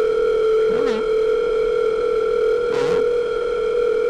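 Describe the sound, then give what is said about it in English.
A steady, unbroken telephone dial tone hums loudly and evenly for the whole stretch, with two brief, faint vocal murmurs rising over it. “I got plenty of phone calls in here”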